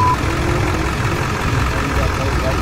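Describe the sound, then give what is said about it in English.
A pickup truck engine idles steadily with two men sitting in it, parked next to a boat at a dock; a continuous low, throbbing rumble that stays even in volume throughout, with no revving or change in pace. “But the men were just sitting there, idling in a pickup truck.”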